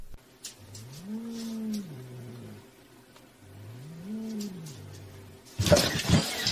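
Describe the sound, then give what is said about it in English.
A cat gives two long, low, drawn-out meows, each rising and then falling in pitch, separated by a short pause. A sudden loud burst of rustling noise follows. “Cat pranks. Meow.”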